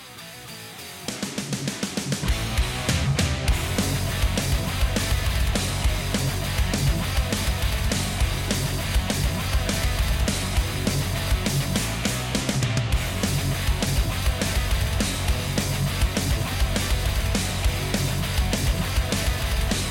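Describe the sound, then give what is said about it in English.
A loud, dense heavy metal track kicks in after a brief quiet second, with driving distorted guitars and pounding drums sustained steadily throughout, no talking over it. “Like, the story for me is, actually, before the story, this is a little clip from the song. This is what I'm talking about.”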